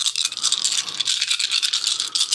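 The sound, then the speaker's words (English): A large handful of dice, rolled for a dexterity save, rattles and clatters continuously for a couple of seconds, a dense, bright clicking with no pauses and no voices. “I think you got too many of those dice.”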